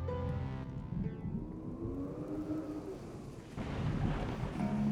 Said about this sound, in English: Well, I see you've brought the rain with you.